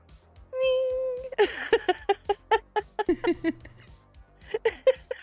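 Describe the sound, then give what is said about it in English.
A person imitates a cat with one drawn-out, clear meow, followed by a quick run of short, rhythmic vocal bursts, fairly loud. “It's got cat ears. If you look at it too long, it goes meow.”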